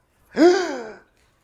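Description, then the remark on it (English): A single sharp, dramatic gasp, fairly loud, with a breathy voiced onset that trails off over about half a second. No talking accompanies it. “Huge gasp.”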